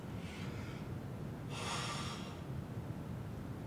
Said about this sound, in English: Pardon my yawn, it's getting a little bit late.